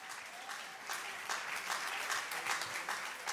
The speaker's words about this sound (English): I celebrate the good things God has done. He's a good God. He's a faithful God. Somebody ought to clap their hands and just thank him.